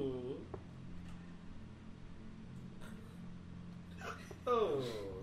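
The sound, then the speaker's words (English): A person hiccups a couple of times, short voiced catches near the start and again just before the end, soft over a low steady background hum. “I have a hiccups today.”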